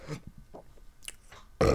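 a small burp

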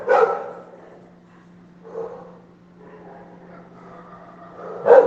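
dogs barking

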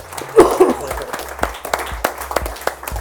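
audience applause

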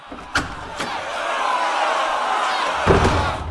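door being opened

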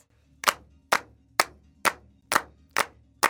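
rhythmic hand clapping

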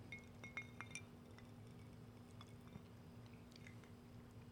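glasses clinking

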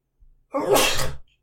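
sneeze

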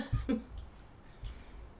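coughing

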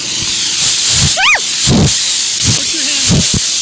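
steam hissing

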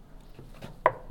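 knock on a door

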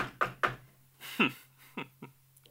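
knocking

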